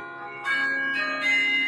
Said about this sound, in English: Solidarity forever, playing on the Jenny McGraw clock tower in the Cornell University, Ithaca, New York